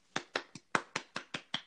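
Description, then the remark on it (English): One person claps eight times in a quick, steady rhythm, each clap sharp and close, with no talking in between. “She gets nothing from me but these.”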